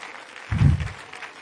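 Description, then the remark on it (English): A church audience claps hands together in praise to the Lord, a steady, dense wash of applause, with a brief low rumble swelling in the middle of the clapping. “Can we clap our hands to the Lord and give Him praise?”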